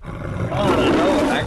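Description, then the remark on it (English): A person imitates the MGM movie company's lion roar with a rough, growling voice that swells and holds loudly for about a second. “I can picture the lion as you freaking make the sound.”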